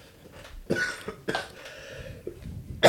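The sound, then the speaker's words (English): A person with the flu coughs, three harsh coughs in quick succession, then a pause with faint breathing before another sharp cough at the very end. “See, coughing's back.”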